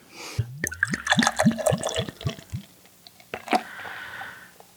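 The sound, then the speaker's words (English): Stout glugs out of a second growler in a quick run of about eight hollow gulps, fairly loud, then a soft foamy fizz as the pour settles. No one speaks. “That's a pretty good pour.”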